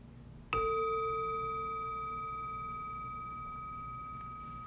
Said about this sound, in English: And we'll start with the sound of the chime.